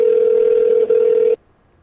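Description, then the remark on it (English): A loud, steady electronic telephone tone as a phone call is dialed holds one mid pitch for over a second, broken once by a tiny blip, then cuts off abruptly into near silence. No one speaks. “So we're gonna dial him up and tell him he's won a new car.”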